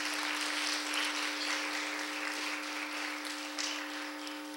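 A group claps steadily for several seconds for a woman who has just shared her story, a dense, even patter of many hands with no voices, accompanied by a faint constant hum underneath.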